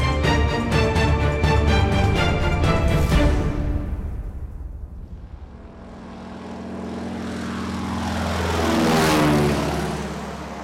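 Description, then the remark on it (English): A propeller airplane engine drones steadily and loudly, fading away midway, then swelling back as another pass roars close overhead with a sweeping pitch shift. No voices. “I have the plane's radio tuned in on their regular bands.”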